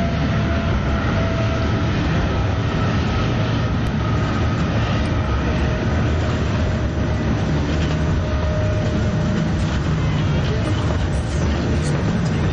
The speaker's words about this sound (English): So the noise we hear overhead is the helicopter escorts flying around.